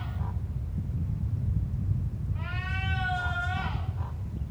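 A single goat bleat rises over a constant low rumbling background, lasting about a second and a half with a nasal, quavering tone before it cuts off.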